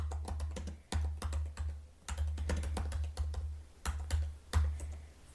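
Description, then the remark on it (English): Rapid, irregular clacking of keys on a computer keyboard, with brief pauses between bursts of typing and a low steady hum underneath. No one speaks. “Oh, it did pick up my typing sounds.”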